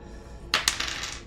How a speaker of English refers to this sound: Yo, get those dice out. Get those dice out of here. Use those. Are you rolling again?